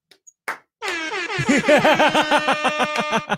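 A loud air horn blares after a couple of short clicks, its pulsing, wavering blasts repeating rapidly for a few seconds in the classic stadium sound-effect style.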